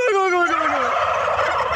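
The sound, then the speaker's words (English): Turkeys gobble loudly, a falling call breaking into a rapid, rattling warble that carries on steadily to the end, with no talking. “Finally today, get ready for some copycat turkeys just in time for Thanksgiving.”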